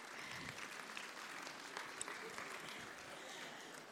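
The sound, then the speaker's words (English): A crowd of people applauding a baby during a sermon, a dense steady patter of many hands clapping at once that holds at an even level for several seconds without any voices. “Let's give him a clap, shall we?”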